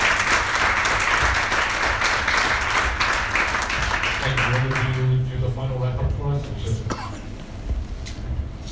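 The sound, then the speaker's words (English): A big round of audience applause thanking a guest at the close of an evening event, loud dense clapping that fills the first half, then thins as voices rise over it and the clapping fades out beneath them. “Can we please have a big round of applause?”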